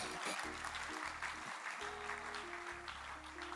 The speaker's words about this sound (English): Clap for the Lord Jesus.